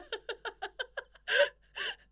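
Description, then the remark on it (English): A single voice imitates a whole town gasping in shock as a man storms a wedding: a quick run of about seven short, rhythmic breathy catches, then two louder, drawn-out gasps, clear with no words. “Whole town gasps.”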